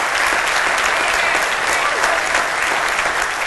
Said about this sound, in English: You are blessed. Why don't you give the Lord a round of applause? Amen.